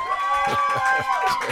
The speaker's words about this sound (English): Let's hear it for Rick Stein in the control room. Here we go. Control room round of applause.